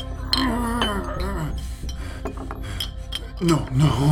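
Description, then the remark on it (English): Empty glass vials and bottles clink and rattle against each other several times at a work table, irregular, with some soft scraping and a faint murmuring voice underneath. “The glass, the ship under glass, the bottles. These vials, they're all empty.”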